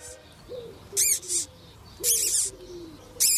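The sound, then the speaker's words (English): A Taiwanese squeaking silk moth caterpillar, being touched by a human, makes bright, raspy high-pitched squeaks in short clustered bursts, with soft, low cooing tones gliding between them. No one speaks. “A Taiwanese squeaking silk moth caterpillar is being touched by a human.”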